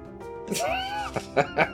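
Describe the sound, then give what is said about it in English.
A cat lets out one drawn-out, rising-and-falling meow in the background, followed by a few short, sharp sounds. It's clear, with no one talking over it. “The cat's talking in the background.”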